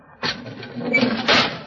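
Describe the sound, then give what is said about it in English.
Air hisses steadily into a pressure chamber, a broad rushing noise that starts abruptly and swells louder toward the end, with no voices over it. “What's that hissing sound? That means that air is being pumped into this chamber.”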